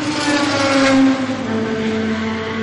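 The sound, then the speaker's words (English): Loud, steady drone of race car engines running through the garages of a pit lane, at garage number 15 of 42, with the next batch getting ready to go out; a layered harmonic hum that swells slightly and dips in pitch partway through, with no voices. “And just walk through, you can hear the cars running through at the moment, and then the next batch getting ready to go out.”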